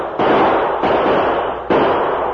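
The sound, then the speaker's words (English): Three loud gunshots crack out at uneven intervals, fired point-blank at a prospector at night, each a sharp blast followed by a dense, roaring decay that carries on until the next shot. No one speaks. “Pinto stopped and fired point blank at the prospector.”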